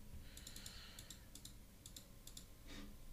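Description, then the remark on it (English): Rapid computer keyboard typing and mouse clicks in short bursts, a cluster of crisp taps followed by pauses, soft, with steady low background hum and no talking. “Sorry, yes, I know I'm clicking a lot and shit like that, so.”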